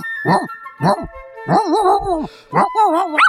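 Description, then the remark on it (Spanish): A human voice imitates a dog barking for the character tío perro in a told fable: two short, sharp barks, then longer wavering yelps, loud, with no other sounds behind them. “Y tío perro fue corriendo y mató a tío zorro.”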